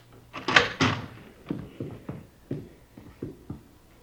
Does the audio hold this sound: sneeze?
no